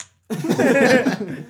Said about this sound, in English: So I thought it was just fart noises.